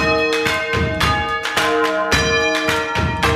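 Several bells ring loudly in quick succession, their rich overlapping tones ringing on and blending between strikes, like a peal from a church tower with no voices present.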